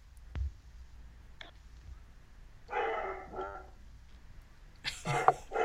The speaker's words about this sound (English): Man, my dog's going ham about something. He's like, not again!